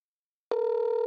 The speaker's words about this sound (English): Yeah, totally just going to make a phone call during the podcast.